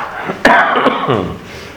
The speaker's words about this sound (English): And yes, I still have a cough, so my hope is that I will only cough 10 times during the next hour, because it seems to start when I talk, and that's always the joy of this.